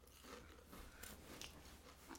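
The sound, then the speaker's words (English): Crunching as someone bites into a crisp, spicy chip, a few sharp crackly snaps spread over a couple of seconds, fairly soft, with no talking. “you want to hear the crunch?”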